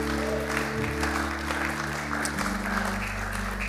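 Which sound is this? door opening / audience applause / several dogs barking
audience applause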